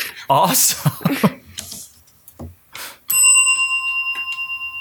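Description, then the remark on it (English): A bright bell rings once and lets its clear tone hang and slowly decay with a gentle pulsing shimmer, following a stretch of speech. “Oh, do you want to hear a sound effect when you ring the bell?”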